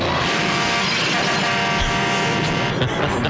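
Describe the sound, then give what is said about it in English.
A loud, steady car engine roar from a 1977 movie trailer, thick and rumbling, with blaring horn-like tones layered through the dense mix for the full few seconds; the car's horn spells out X in Morse code. “we're watching the trailer for The Car”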